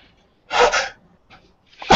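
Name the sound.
sneeze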